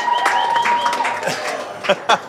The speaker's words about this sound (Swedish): Oj! Vi får applåder från... Hej! Nu hör man att det är live.